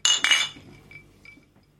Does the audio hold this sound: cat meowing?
no